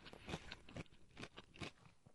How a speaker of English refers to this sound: But I can hear the crunch from your bite. And when you have a nice crunchy breading.